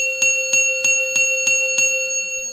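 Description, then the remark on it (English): A bell rings in a fast, steady series of about six sharp strikes, each chiming loudly over a continuous bright metallic tone that sustains throughout. No one speaks. “Otherwise, the bells don't ring.”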